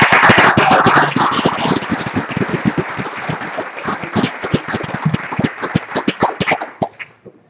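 A standing crowd at Hemtown applauds its young people, many hands clapping in a dense, crackling patter with sharper individual claps standing out, strong at first and thinning out before it stops about seven seconds in.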